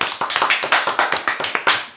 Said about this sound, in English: Stuart fucking clapped.